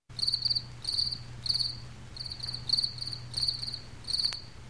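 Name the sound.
crickets chirping at night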